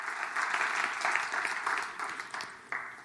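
A crowd claps together in praise of the Lord during a sermon, a dense, steady burst of applause that gradually thins out, with a few scattered claps lingering near the end.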